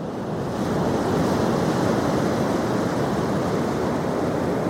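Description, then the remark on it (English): A steady, full rush of ocean surf breaking on a beach, loud, with a constant roar of water and wind and no voices. “cue the waves”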